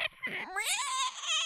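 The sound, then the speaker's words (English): A person, asked for their best dinosaur noise, imitates a pterodactyl with one high, strained squawk that swoops upward in pitch and holds, harsh and shrill, fairly loud and alone. “Squawk. Is that the little flying guy? Yeah, the pterodactyl, the pterodactyl.”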